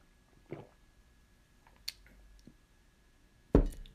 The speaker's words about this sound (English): All right. Taking a sip.